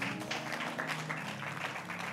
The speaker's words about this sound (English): Our guest from Pensacola. Thanks for coming. That's nowhere near Tennessee, so nice to have you. Give our friends a hand clap from there.